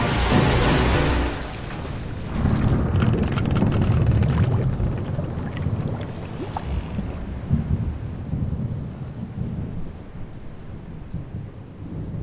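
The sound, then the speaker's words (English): A loud crash of surging water opens, then gives way to a heavy, rumbling roar of an ocean wave cresting over the front of a ship as its hull cracks and the boat folds in half, continuous, with no voices. “As the boat physically gets folded in half and the wave press over all of you.”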